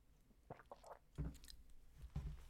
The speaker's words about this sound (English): Half an hour has gone by of my ranting, and it's time for a sip of grape juice.